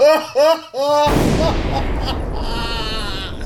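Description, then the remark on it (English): Three quick, loud Jamaican air horn blasts in a row, each with a bright, bending pitch, then a heavy explosion-like boom that crashes in and rumbles on with noisy debris to the end. “He got the Jamaican air horns.”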